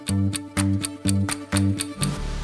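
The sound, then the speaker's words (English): A clock ticks steadily, about three crisp ticks per second, over a soft, repeating musical backing; no one speaks. “I can write a loop for a number, like plant 5 flowers, or I can use a loop to repeat something forever, like how a clock keeps ticking forever and ever.”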